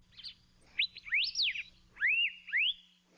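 An Elepaio, a native Hawaiian species of flycatcher, calls with bright, rising whistled notes in two quick bursts, clear and fairly loud against a faint low hum, with no talking.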